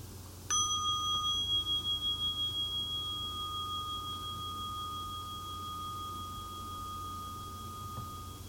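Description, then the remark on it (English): A single meditation bell is struck once to end a meditation exercise and rings out clearly, its shimmering tone pulsing gently as it slowly fades over several seconds against a quiet, low background hum. “Because we end this with a bell, of course, and let people breathe.”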